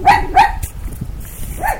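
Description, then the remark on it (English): A dog barks twice in quick succession, loud, then lets out a softer third bark a moment later over a low background rumble. “Rox, what are you seeing? Do you see a dog or something?”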